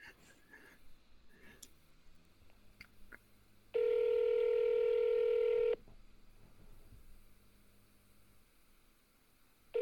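A phone call to Creed rings out: one loud, steady electronic ringback tone lasting about two seconds, a long pause with faint background hum, then the next ring just starting, with nobody picking up.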